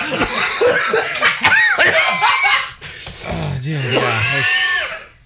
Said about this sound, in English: I'm gonna clip together all the fucking all the coughs just this week on High Noon.